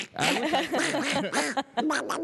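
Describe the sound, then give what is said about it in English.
A voice imitates Donald Duck, a raspy, buzzy squawking babble in rapid bursts for about two seconds, fairly loud with brief gaps near the end. “We have Donald Duck here all of a sudden.”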